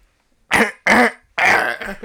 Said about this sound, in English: Yeah, what is wrong with your voice? I don't know. Do you need to clear your throat there? You're too gay. It's Jesus Christ. Clear your throat, man.